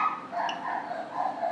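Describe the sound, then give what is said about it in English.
A dog barks in a high, yappy pitch, the calls running together in a steady stream, with no one talking over it. “It's a different dog.”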